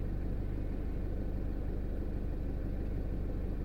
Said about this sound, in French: Ouais, j'ai le moteur qui tourne parce que je suis obligé de laisser tourner le moteur pour que la batterie elle charge dans la voiture de merde. Alors si je coupe le contact, ça me coupe la charge de la batterie quoi.